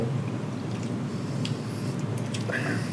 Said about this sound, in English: All right, let's do a little sippy.